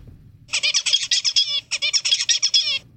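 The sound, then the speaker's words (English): A young small bird sings two quick, high-pitched phrases of rapid warbling notes, separated by a brief pause, imitating its father's song. The song is clear, with no talking. “And this is the one where he mimicked it.”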